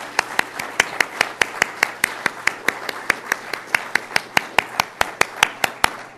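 An audience claps together in a steady, even rhythm, roughly four or five sharp claps per second, moderately loud with a faint room hum underneath and no talking.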